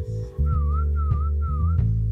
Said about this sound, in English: And hopefully people are hearing that whistle.